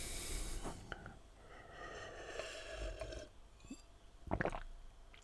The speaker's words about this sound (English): Sip my drink.